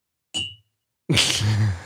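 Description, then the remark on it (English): A bell is struck once with the end of a knife, giving a brief bright metallic ting that fades quickly. After a short silence comes a louder, noisy burst with a voice-like quality. “No, I hit it with the other end of the knife.”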